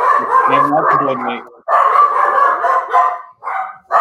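Dogs bark and yowl loudly in three long, drawn-out bursts separated by brief pauses, the harsh, wavering calls overlapping with no other sound around them.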